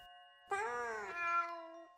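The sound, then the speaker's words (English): A tabby cat called Little Orson lets out one long, drawn-out meow, rising slightly then sliding down over about a second and a half, clear and fairly loud with no talking over it. “I'm going to call you Little Orson, Mr. Tabby.”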